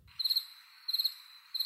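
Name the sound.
crickets chirping sound effect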